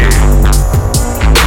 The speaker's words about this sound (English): Hey, the aircon. Hey, whoever saw now the aircon. Hey, you gotta do out of hours, man. You gotta come out your ass and do out of hours. Cause this aircon is definitely needed.